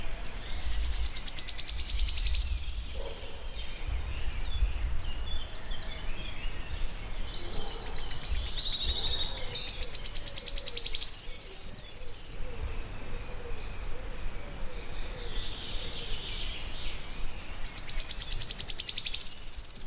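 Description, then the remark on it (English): A wood warbler, singing from a very tall oak about 6 feet away, gives a high, shivering trill three times, each song speeding from separate ticking notes into a dry, rattling burst, with quieter woodland bird calls and a low rumble between. “Like a wren, he puts his head back, shivers his wings, lifts his beak to the sky, opens it, and lets out this incredible machine gun fire dripping from his tree.”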